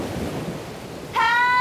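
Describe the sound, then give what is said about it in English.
A deep, rumbling clap of thunder rolls loudly with a noisy roar, then a steady high-pitched ringing tone cuts in over it near the end. “When Estelle's body rose to 50 feet in the air, another clap of thunder struck.”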